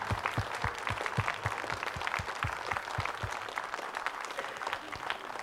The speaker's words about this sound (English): So right now I want to honor anybody who's been coming and serving to the church for over 10 plus years. I would like you to stand up. Stand up. 10 plus years, stand up. 10 plus years. Yeah, give them a hand clap.